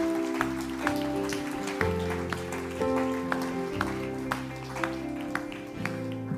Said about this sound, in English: Church, can we just give God a hand clap of praise? Just thank Him.